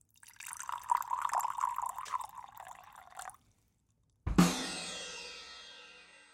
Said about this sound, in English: Dandy Chase fills his glass.